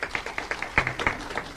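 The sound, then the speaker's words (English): Scattered, fairly quiet applause from a small group answering whether they participated in a sport, with irregular claps overlapping and a couple of sharper, louder claps standing out briefly partway through. “So the first question that I have for you guys is, how many of you, and please use the sound of applause, when you were younger or even now, participated in a sport?”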